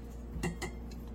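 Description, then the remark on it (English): Ground coffee from home-ground whole coffee beans is tipped into a French press, marked by two quick clinks of metal against glass about a fifth of a second apart, with no talking. “I'm just gonna dump that in there like that.”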